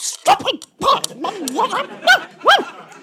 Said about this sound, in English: Dusty gives more excited barks in the hope that he is now being understood.